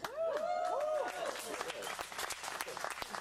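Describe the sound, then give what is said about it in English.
A church audience at Calvary Chapel Palos Verdes bursts into steady, dense applause with cheering and whooping voices rising over it at first, reacting to the announcement that services will move indoors on May 30th; the clapping continues loudly and evenly for a few seconds. “I was like, okay, what, are we going to hear crickets? Are we going to hear cheering?”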